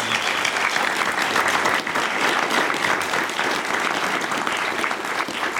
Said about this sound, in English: How about a big round of applause for us?